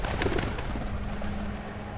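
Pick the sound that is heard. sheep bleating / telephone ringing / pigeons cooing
pigeons cooing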